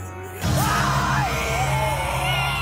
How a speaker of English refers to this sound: What the fuck is happening? Oh my god. They just woke up screaming at each other. That's really funny.